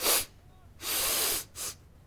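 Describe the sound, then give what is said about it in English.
A quick sniff, then a long, deep, drawn-in sniff lasting over half a second, followed by a brief final snuffle. The breathy, airy sounds are fairly loud, with no talking. “sniffed an even bigger sniff this time, getting a deep whiff.”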